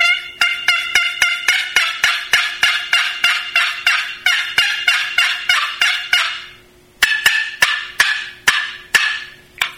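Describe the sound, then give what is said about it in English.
Fast, excited yelping on a turkey box call: a long run of about twenty rapid, sharp raspy notes, a short pause, then another quicker burst, loud with no talking. “But, you know, excited yelping on a box call.”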